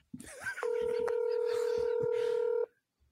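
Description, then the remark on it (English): A single steady ringback tone from an outgoing phone call, sounding for about two seconds, with brief muffled noises just before it starts. “One ringy dingy.”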